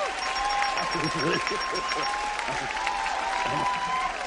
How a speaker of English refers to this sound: This is a historic moment in this show. And everyone's applauding.